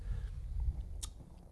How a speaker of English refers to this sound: Good Lord, you got to chew it.